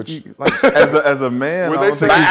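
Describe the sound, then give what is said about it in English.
A human voice bleats like a sheep or goat, a wavering, quavering cry held for a couple of seconds, fairly loud, with a brief chuckle-like break near the start. “It didn't sound like no damn goat. It sounded like a bunch of sheep out there.”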